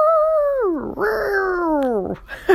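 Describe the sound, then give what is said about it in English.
A voice imitates a revving engine with a sustained, tonal hum that slides down in pitch, surges back up, then drops away again, ending with a short breathy burst. “That was supposed to sound like a revving engine.”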